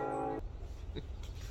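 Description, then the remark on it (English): A loud, steady train horn blast from a train going by in the countryside ends abruptly, giving way to a low, continuous rumble like a train rolling past. No one speaks. “Had a train go by, so I had to pause for the horn.”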